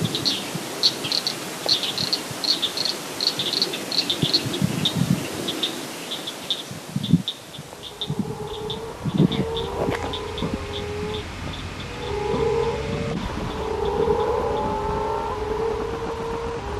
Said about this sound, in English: Let's continue with the frog theme. Jonathan Reese sent a recording from Florida in the USA. This is Okefenokee Swamp in Georgia